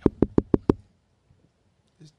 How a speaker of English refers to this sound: Can you do me a favor? What's up? Can you answer that door for me? They knocking just. Yeah, they knock every week.